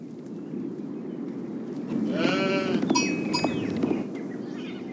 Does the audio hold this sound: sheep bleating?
yes